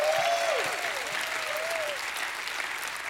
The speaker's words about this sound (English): If you know the feeling, give him a hand clap and a shout of praise.